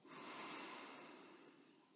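A single long, steady inhale drawn through the nose during a guided relaxation breathing exercise, airy, sustained for about two seconds and tapering slightly at the end, with no talking.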